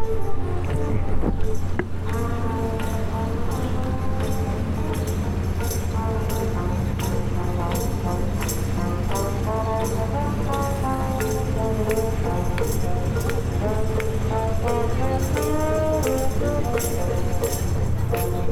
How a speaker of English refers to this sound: Oh, here, the boat with Jazz is going by. I'll see if you can hear it. 1 second.